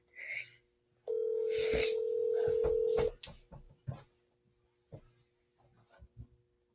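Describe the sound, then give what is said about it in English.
An outgoing phone call rings: one steady, loud ringback tone lasts about two seconds, followed by quiet clicks and handling noises. “Okay, guys, it's ringing.”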